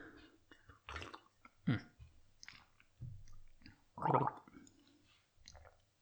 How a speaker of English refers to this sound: Let's take a sip here.